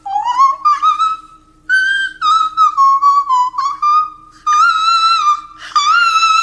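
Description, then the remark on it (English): A person whistles a short melodic tune, the notes gliding and stepping up and down in a steady phrase with brief pauses, loud and clear with no talking. “I can whistle it.”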